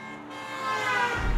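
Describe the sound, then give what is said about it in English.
A car horn blares in one long, steady, loud blast, with a low road or engine rumble swelling underneath toward the end. “A horn blared and Jessie snapped awake.”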